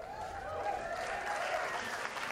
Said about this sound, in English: Yeah, yeah. Keep clapping.